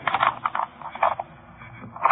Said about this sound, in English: That's funny. What's the matter, please? Key doesn't seem to fit. Well, you sure it's the right one? Yeah. Hey, this isn't the same lock on here.